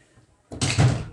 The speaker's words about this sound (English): Shutting my door for my dogs.